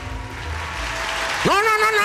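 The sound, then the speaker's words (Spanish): A steady recorded applause sound effect plays in a studio, filling the whole two seconds with a dense wash of clapping, with a rising whoop or cheer-like voice cutting in near the end. “¡Aplauso, por favor!”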